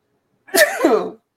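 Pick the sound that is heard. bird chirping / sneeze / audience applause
sneeze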